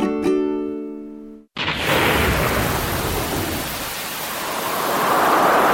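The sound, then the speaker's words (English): A short musical tone cuts off, then a loud thunderstorm takes over: steady heavy rain hissing, with deep rolling thunder rumbling underneath, no voices. “Storms are Australia's most costly natural disaster.”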